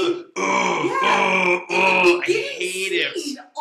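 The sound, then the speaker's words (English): A voice imitating the grunting of Jason, the movie killer: a few loud, harsh, strained throaty grunts strung together over about three seconds, with brief breaks between them and no words. “And I don't know if it's, like, they updated the Dolby surround sound, but for the first time ever, Jason was so grunty.”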